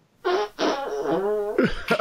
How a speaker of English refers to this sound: I gotta fart first, but I gotta wait.